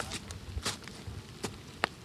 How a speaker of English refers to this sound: Then, it starts raining.